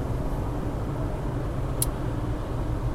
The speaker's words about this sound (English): Driving home from SeaTac Airport.